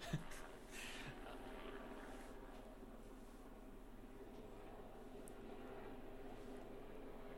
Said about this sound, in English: Pretty close. I wonder what the helicopter's doing. It's late, too.